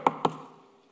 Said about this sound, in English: I stand at the door and I knock.